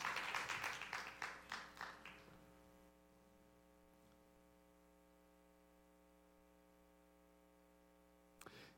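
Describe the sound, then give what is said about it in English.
A short burst of audience applause fades out over about two seconds, leaving a steady electrical hum that continues alone, with a single brief click near the end. “He deserves a hand of applause.”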